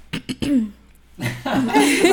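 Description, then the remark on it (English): A person clears their throat: a couple of short, sharp bursts followed by a longer, rougher, raspy clearing sound, with no speech. “Like, let me clear my throat.”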